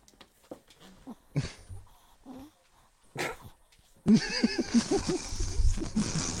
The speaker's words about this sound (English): Your dog just groan, bro. Bro, ayo, he moaning, bro. Oh, he just like what you working at? What you want? Oh, he wants outside.